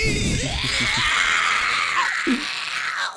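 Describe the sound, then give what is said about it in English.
A person lets out a loud, sustained vocal screech for about three seconds, a strained, raspy shriek imitating a harsh screeching cry, then it cuts off abruptly. “He opens the door, the sunlight hits him, and he just starts screeching.”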